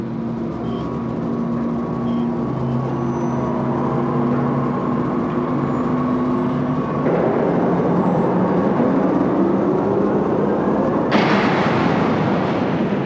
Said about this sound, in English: Okay, so what do we have next? So next we have some big doors closing.